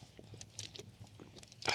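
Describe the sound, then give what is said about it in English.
Quiet mouth sounds of someone sipping water: soft wet slurps and lip noises, ending in a brief, louder gulp. No one speaks. “I get a sip of water, so it's about to be good.”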